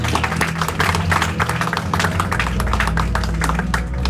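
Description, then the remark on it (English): A church audience claps steadily for about four seconds, a dense patter of many hands, with a low sustained hum or keyboard tone running underneath. “Clap for them again.”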